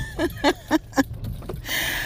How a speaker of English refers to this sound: Once again, I'm in the car. I'm on the move, but it's nothing serious at the moment. I'm going for a coffee run on this here good Saturday,